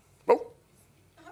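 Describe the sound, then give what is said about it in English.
A single sharp dog bark rings out, then fades into near silence, with a faint murmur starting just at the end. “Dogs speak.”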